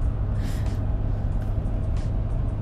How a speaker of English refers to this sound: Driving again. Always feeling inspired and motivated behind the wheel.